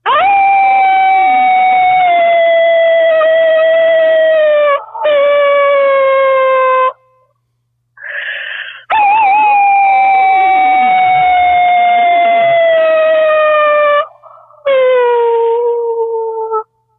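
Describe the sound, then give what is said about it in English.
A human voice imitates a long, wavering wolf howl, sustained and sliding in pitch, repeated in two extended runs with brief breaks between, loud. “Howl along with me.”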